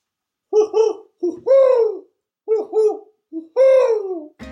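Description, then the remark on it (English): An owl hoots in two matching phrases, each a couple of short hoots followed by a longer, drawn-out call that falls in pitch. It is fairly loud, with no talking. “That owl sounds pretty cool”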